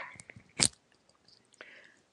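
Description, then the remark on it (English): A single sharp sneeze bursts out loudly, a brief explosive hiss that cuts off quickly, with faint breathy sounds and quiet rustling before and after. “Bless you.”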